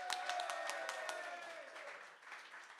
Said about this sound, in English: Let's have a round of applause for Amanda. For Lucy.